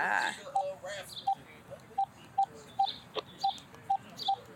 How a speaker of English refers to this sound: Try it again. You want to try it again? Try it again. Go ahead, just dial one more time. This phone's good.